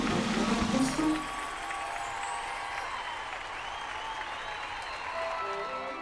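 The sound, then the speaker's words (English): A crowd claps and cheers in a dense, steady roar of applause, loudest in the first second, then holding at a lively level with scattered voices and whoops mixed in. “The crowd went wild for that one.”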